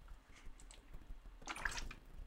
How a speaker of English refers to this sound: Sorry, I just had to take a sip of my coconut water. I was so upset.